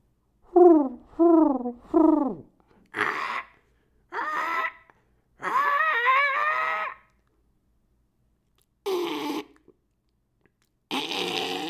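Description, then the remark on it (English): A squirrel calls: three quick squeaky yelps, then a run of harsher, raspy chattering bursts separated by brief pauses, with no talking in between. “That's a squirrel.”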